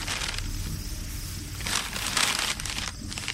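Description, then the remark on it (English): A large square of gleaming white paper being pulled from a bag and handled, with steady rustling and several louder crinkling bursts toward the end, no voices. “He reached back into his impossible satchel and produced a large square of gleaming white paper.”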